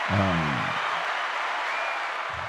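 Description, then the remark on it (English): Steady studio audience applause, a dense wash of clapping that holds at an even level for the whole stretch, with a man's voice briefly speaking over it at the start and again at the end. “So, man, we give you a round of applause for everything you got going on, man.”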